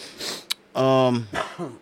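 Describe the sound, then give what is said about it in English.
A short breath, then a single voiced cough that sounds put on, followed by a brief breathy rasp. Heard alone, with no talking. “Get a cough in there in case your boss is listening.”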